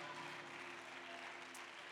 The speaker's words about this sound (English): Come on, let's give Jesus another big hand of praise. Come on, put some feeling in it. If you believe God's about to deliver, clap your hands in advance for what God's going to do. Hallelujah.